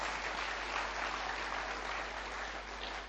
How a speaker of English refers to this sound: Someone shout amen. Amen. Someone give the Lord a clap. Hallelujah.